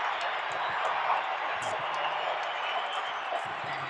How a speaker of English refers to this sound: Timeout Mike D'Antoni. They've got it to 15. The crowd is roaring.